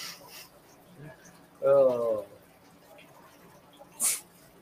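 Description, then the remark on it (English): A crow gives a single harsh, drawn-out caw, followed a couple of seconds later by a short, sharp hiss of noise against a quiet background; crows are attacking puppies. “Oh, pesky crows attacking the puppies now.”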